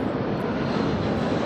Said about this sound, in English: Sorry, there's a plane that flew by, so I suppose I'll just take it down a notch with the topic.